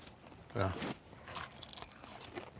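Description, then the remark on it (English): A loud, crunchy bite into a fried onion ring, followed by a few softer crackling chews. “Crispy. Crunchy. That is a good onion ring.”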